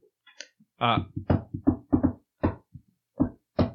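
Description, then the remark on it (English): A voice mimics a secret knock on a door, about ten short, punchy vocal beats in a patterned rhythm of quick pairs and pauses, fairly loud with no other talk. “You give a secret knock. I give the secret knock.”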